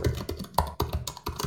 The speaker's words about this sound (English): And someone is typing really loud. Sorry.